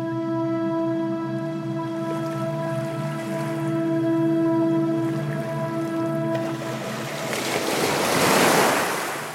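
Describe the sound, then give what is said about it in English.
Ocean waves wash steadily with a breathy sea wind, a low sustained tonal drone running beneath, and a louder surge of surf building and breaking near the end. No one speaks. “Can you smell that salty sea air?”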